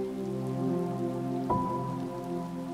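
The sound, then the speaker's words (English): Steady rain patters on a hard surface in a continuous wash, with sustained musical tones humming underneath and one slightly sharper tap partway through. “Do you even like the rain?”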